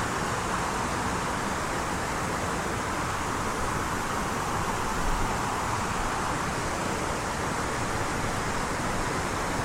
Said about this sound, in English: It's wiggled its way through the glen to get to this point, and the water itself gathers speed, rushing towards the edge of the lip. It's been eroded and channeled away for thousands and thousands of years.